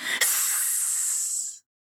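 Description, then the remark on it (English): A single sharp, airy snake hiss that holds steady for about a second and a half, bright and high-pitched, then stops abruptly. No voices accompany it. “You will be a permanent visitor to the snake's nest. She hissed again.”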